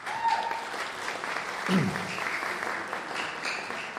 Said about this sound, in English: So thank you to the Manawatū Telugu Association for that lovely song. Give them a clap anyway.